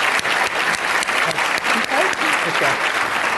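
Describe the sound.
An audience applauds steadily for the finance minister at a Canadian Club of Toronto event. Dense overlapping hand claps form a loud, even wash of sound, with a few sharper individual claps standing out and faint voices mixed in.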